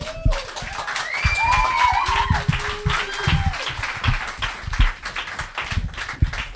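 A crowd applauds with steady, dense clapping that fills the whole stretch, while a few whoops and rising whistles ring out over the top, fading slightly toward the end.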